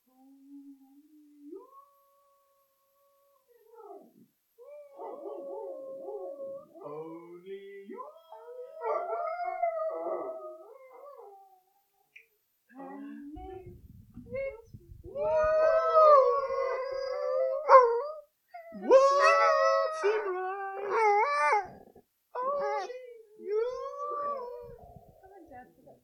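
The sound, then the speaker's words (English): A dog howls in drawn-out, wavering tones as a singing trick at its owners' house, building to louder, higher howls in the second half, with a human voice vocalizing alongside at times and brief pauses between phrases. “… and … are going to get their dog to become a performing monkey, and they want to share something with you”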